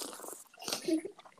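Someone slurps drinking water, a short run of wet sips and gulps in uneven bursts, soft at first and then louder toward the end.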